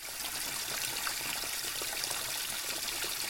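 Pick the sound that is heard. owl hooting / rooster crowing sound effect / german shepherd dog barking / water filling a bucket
water filling a bucket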